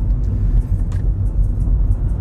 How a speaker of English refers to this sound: Oh no, I can hear my cutlery in the boot. Oh dear. I don't know if you'll be able to hear that. It's like a little jingle.